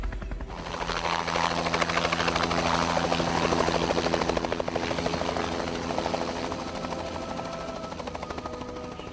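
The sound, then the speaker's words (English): A helicopter roars, its rotor chopping in a steady rapid pulse over a deep engine drone, loud and continuous throughout as it comes down through an open gate in a fenced-off roof over a village. “an already open gate, large enough to fit the helicopter through. We are here. They started their descent.”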